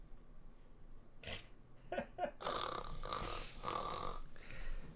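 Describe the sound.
A person fakes snoring: a few short snorting breaths, then a longer drawn-out raspy snore through the nose and throat, fairly loud, with no talking.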